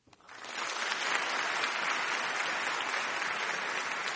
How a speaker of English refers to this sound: So when I raise my right hand, if you can just do a round of applause like before. Thanks.